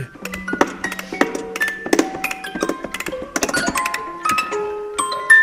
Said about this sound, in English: Well, it's clanking and creaking a bit. Now it needs to be oiled.